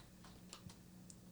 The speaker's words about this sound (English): I wonder if I Google shooting some meatball. Meat. Oh gosh, this keyboard.